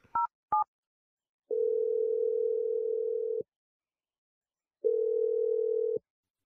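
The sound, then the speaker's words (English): Two quick keypad beeps of a phone being dialed for a phone call, then a steady ringing tone that sounds twice in long, even bursts with a pause between, clear with no voices. “we're going to dial Vanessa's number”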